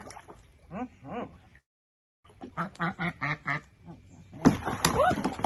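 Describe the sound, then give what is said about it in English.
Ducks being given a warm-water bath as treatment for possible egg binding quack in short, raspy bursts, a pair of calls, a pause, then a rapid run of about six, followed by louder splashing and water sloshing with a few more quacks. “Figure, I don't know which duck is egg bound, so we'll just try and treat them all.”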